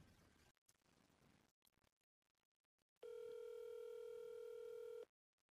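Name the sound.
phone call ringing tone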